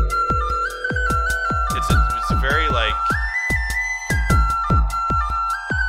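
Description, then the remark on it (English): A thin, cheap-sounding whistle, recorded in a car and clipped in Audacity, holds long steady notes that step up and down in pitch, layered over a steady, punchy drum beat made in LMMS (Linux Multimedia Studio) with regular thumps. “It's a very cheap sounding whistle, but it's what I had.”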